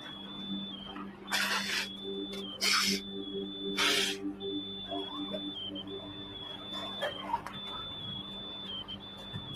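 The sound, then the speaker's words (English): High-pitched electronic alarm tones from firefighters' trackers at the collapsed World Trade Center sound almost continuously at a fairly loud level, broken by several short bursts of harsh hissing noise and a low background rumble. “When it settled, you could hear in the background the chirping that was so loud from their World Trade Center. Almost like cicadas in the summer.”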